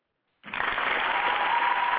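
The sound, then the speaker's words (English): A burst of applause begins abruptly after a brief silence, a dense, steady wash of many hands clapping at an even loudness, with no voices over it. “I just like the applause.”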